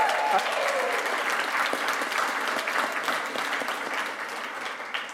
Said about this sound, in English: In this room right now, we have people who literally just started discipleship in the last week. And I, to be honest, let's take a moment to applaud that. Yeah?